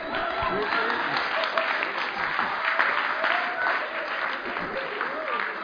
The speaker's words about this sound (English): Some of you are clapping because you don't know what it is.